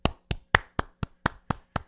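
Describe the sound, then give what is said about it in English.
Eight crisp hand claps in a steady, even rhythm of about four per second, each sharp and evenly loud, with no voices. “And hey, let's give them a huge round of applause here.”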